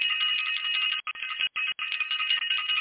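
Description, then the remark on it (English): A bell is rung for the Self-Invested class: it rings continuously for about three seconds, a bright, high metallic trill with a few very brief breaks, sounding alone with no talking. “I got to ring the bell for Self-Invested.”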